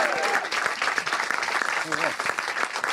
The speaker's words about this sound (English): Oh, I heard you begging for artificial applause. Unbelievable. That's what I heard. I wasn't begging. I was asking nicely.